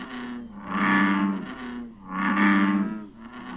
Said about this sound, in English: That's a good noise. That's the best frog noise in my opinion.